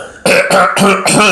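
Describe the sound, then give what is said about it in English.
A loud throat clearing: four rough, gravelly bursts in quick succession after a brief silence, with no talking. “Let me clear my throat.”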